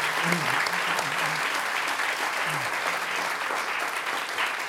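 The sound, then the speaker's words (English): An audience at an evening program applauds steadily to thank the station KCRW, a dense and even wash of many hands clapping at once that stays loud through the whole stretch, with faint murmuring voices underneath. “We couldn't do it without them, and we're thrilled to have Warren Olney with us, so a big round of applause for them, please.”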